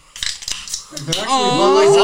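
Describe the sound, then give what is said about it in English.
A few sharp metallic cracks and short fizzing hisses of Bud Light Seltzer hard seltzer cans being opened, quickly followed by several voices talking loudly over one another. “Crack these claws, baby.”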